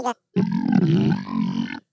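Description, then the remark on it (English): A long, low, rumbling burp lasting over a second, fairly loud, preceded by a brief short vocal sound, with no talking over it. “Did you burp?”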